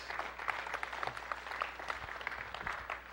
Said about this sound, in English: Applaud yourself.